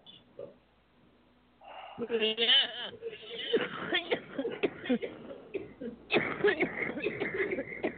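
Loud coughing and throat clearing in a run of harsh, raspy bursts after a quiet start, pausing briefly before another rough fit of coughs.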